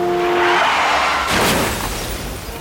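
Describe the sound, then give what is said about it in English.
A car driven by Robin on a rainy night loses control and skids with a sustained, whining tire screech, then slams into a tree with one loud crash and a burst of shattering debris, followed by fading rumble. No voices. “Robin was driving on a rainy night and then loses control of her car and slams into a tree.”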